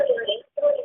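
A phone rings in two quick bursts of a bright electronic tone, separated by a brief silence, fairly loud and with no one talking over it.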